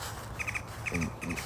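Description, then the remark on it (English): Birds hopping in a tree give quick, bright chirps in three short bursts of three, with a low hum rising beneath the later bursts. “They're hopping towards me in the tree.”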